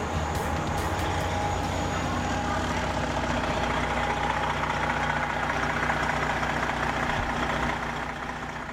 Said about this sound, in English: The sound of buses idling to pick up climate change activists and protesters. Why do I keep playing that? Is it such a big deal that the buses are idling?